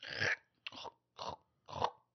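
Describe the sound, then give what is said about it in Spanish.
Four crisp crunching bites in a steady rhythm, like someone chewing glass, each crunch sharp and gritty with brief silences between them. “Mascaba vidrio, güey.”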